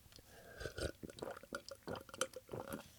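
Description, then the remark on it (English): Quiet liquid sounds, a run of small drips and splashes like water being poured or sipped, coming in irregular bursts with no talking. “I got my water. Today I got water so I don't burp.”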